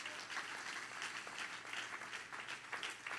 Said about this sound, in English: Everybody clap your hand.